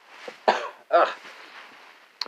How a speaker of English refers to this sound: One moment, please. I got another snack cough.